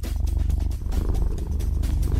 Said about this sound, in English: you need to, like Glenn is doing, you need to sit and purr